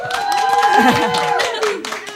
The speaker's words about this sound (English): I mean, brothers and sisters, I think we need some more applause. I don't know.